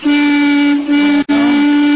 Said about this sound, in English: Oh, what's the matter with him? Can't he read? Please do not honk your horn.